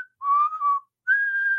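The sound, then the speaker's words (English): A person whistles a short tune, the intro of a song: a wavering phrase followed by a brief pause and then a long, steady held note, with no other sounds around it. “And I think, again, the most famous version of the song has a whistle intro where it's like...”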